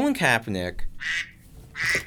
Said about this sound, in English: We need to get a duck out of the studio. Yeah. All right, go catch that duck,